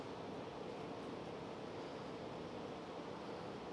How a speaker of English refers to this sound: I'm sorry. The wind is blowing. It's that Holy Ghost wind.